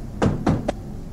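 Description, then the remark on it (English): Two solid knocks on a door in quick succession, followed by a lighter, quicker tap, with no voices and only a faint background hum. “Two knocks.”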